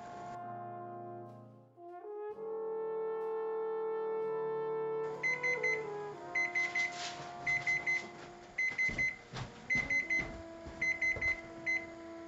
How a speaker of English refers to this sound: Okay, this goes off. 1 minute. Okay, just to clarify what you heard there, 6 minute timer goes off, turn off your heat.